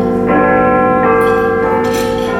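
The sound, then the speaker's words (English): The Big Ben clock bell chimes 2 o'clock with loud, repeated strikes, each ringing tone swelling over the last and hanging in a rich, humming sustain. No one speaks. “We're based in Big Ben. The canteen's right behind the big clock.”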